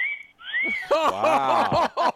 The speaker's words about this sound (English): Wow, we got wolf whistles on the show.